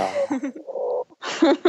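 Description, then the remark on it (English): A domestic cat meows, a few short chirpy calls running into a drawn-out mew, then a brief pause and a rougher, noisier burst of sound. “My cat just, like, these two little paws came shooting out of the door because she knocked something under there.”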